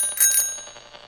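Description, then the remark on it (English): A bicycle bell rings with a bright metallic double ding, its shimmering tones lingering and fading over the next second with no voices present. “You got all excited and ran over here to tell us and the listeners that you found a bicycle bell?”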